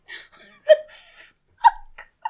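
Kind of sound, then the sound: human body sound, hiccups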